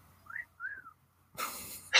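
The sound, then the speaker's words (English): Two short, clear whistled notes, each sliding up and back down, sound like a bird's call. A burst of rushing, hissing noise follows. “That bird looks an awfully lot like an old man. Is he whistling at you?”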